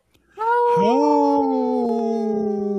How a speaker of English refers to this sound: Howl!